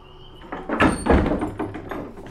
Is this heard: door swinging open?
yes